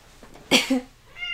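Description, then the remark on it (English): A cat gives a short, abrupt meow, starting with a rough breathy burst and sliding into a brief tonal cry, then a faint higher note trails off. No one speaks. “Except Kitty is being mischievous right now.”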